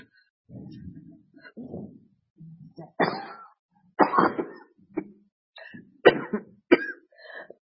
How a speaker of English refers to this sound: Excuse me. I'm not sick, but this is kind of like asthmatic cough that I developed there because I exposed to many fumes over there.